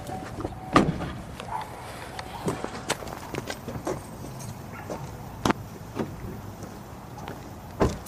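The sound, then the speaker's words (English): Footsteps crunch and tap along a hard street surface at an uneven pace as a person who has got out of a car walks to look for a street sign, a few sharper steps standing out over low background rumble, with no one talking. “So I got out of my car and I started walking.”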